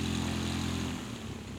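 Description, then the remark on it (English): A propeller airplane engine drones steadily with a deep, buzzing hum, loud and continuous, its tone roughening slightly toward the end as if the plane is passing or throttling down, on a flight from the Bahamas to Miami through mist. “The plane eventually lands safely.”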